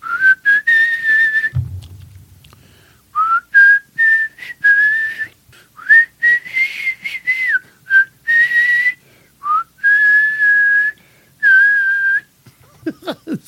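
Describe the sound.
A person whistles a slow, wavering melody imitating the whistled intro of a rock song, in a series of sustained and gliding notes, with a short low thud near the start; the tune is clear and uninterrupted by talk.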